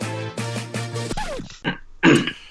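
A man coughs, with a run of low, rough, throaty grunts followed by two sharp, harsh bursts. No talking.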